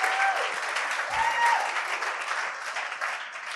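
Steady applause from an audience on Freedom Sunday, given to a man for a transition in his life, fills the whole stretch, a dense wash of many hands clapping at an even, fairly loud level without letting up.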